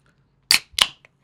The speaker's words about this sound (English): I got a beer right here. I'm going to open it right now. Listen.